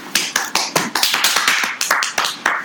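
Applause from a studio audience: sharp, bright hand claps in a fairly steady rhythm, about a dozen in under three seconds, loud and with no voices over it.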